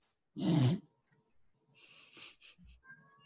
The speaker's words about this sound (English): Kitty! You heard that?